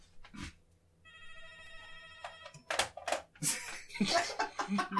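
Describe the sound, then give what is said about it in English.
A landline telephone rings with a steady, buzzy electronic tone lasting about a second, before louder voices and bursts of noise break in over it. “No, the phone? Is it the phone? Yeah, the phone.”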